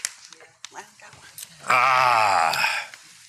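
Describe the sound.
A man imitates a donkey's bray, one loud, wavering drawn-out call lasting just over a second, preceded by soft murmuring and shuffling.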